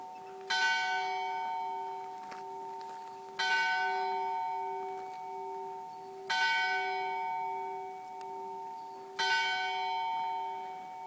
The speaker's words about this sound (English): Well, that was the bells as we heard them at the Hohenzollernsburg Fortress, which is one of our top 10 things to do in the city of Salzburg.